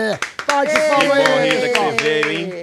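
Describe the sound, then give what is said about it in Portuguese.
A crowd claps loudly and steadily for a few seconds, sharp rhythmic hand claps over a bright, sustained musical tone, energetic as a performer is welcomed. “Vamos receber como das palmas a nossa queridíssima …!”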